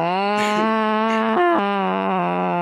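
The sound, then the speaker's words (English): A person imitates an angry cat with a loud, sustained, nasal yowl lasting a couple of seconds, its pitch briefly jumping up near the end before settling again. “Pissed off cat. I love that one.”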